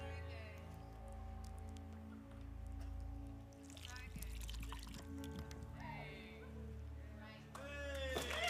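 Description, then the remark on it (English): Liquid pours into a container in a few separate bursts, splashing and gurgling, the pitch rising as the vessel fills, over a steady low hum. “And the reality is, at the start, it can be all froths and bubbles.”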